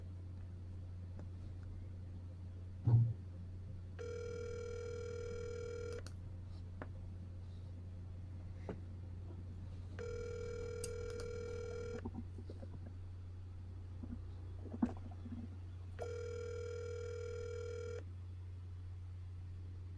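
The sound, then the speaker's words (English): A phone ringback tone sounds through a speakerphone in three evenly spaced two-second bursts, steady and clear over a constant low hum with occasional faint clicks. “Then it's still ringing.”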